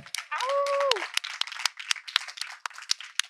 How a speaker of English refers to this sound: Let's go ahead and give Adrian a round of applause for DJing.